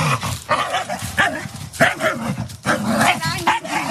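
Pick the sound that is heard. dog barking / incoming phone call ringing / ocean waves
dog barking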